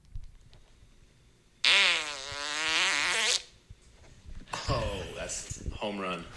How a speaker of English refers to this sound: He's a first fart sponder. Here we go. Here's a couple. Quick ripper.